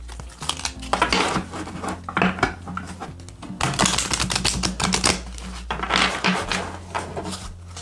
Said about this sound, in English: Okay. I'm going to get one more shuffle. All right.